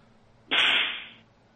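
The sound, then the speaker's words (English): A single horse whip crack sound effect, presented as a laser horse whip, snaps in abruptly and loudly, then trails off in a hissing decay over most of a second, with no voices around it. “Wait, is that it? Is that's your horse whip?”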